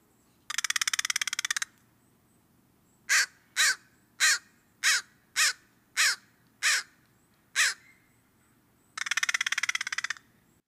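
An American crow (Corvus brachyrhynchos) gives a steady series of eight short, harsh caws, loud, framed at the start and end by longer rapid rattling calls, with no talking.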